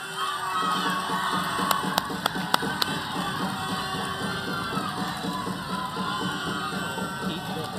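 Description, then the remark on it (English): A crowd cheers and applauds steadily for several seconds for everyone taking part, just before a tenth and final round; a dense, loud wash of noise with a few sharp claps standing out early on and excited shouting mixed throughout. “You've all been excellent, and I think we should give them all a big round of applause.”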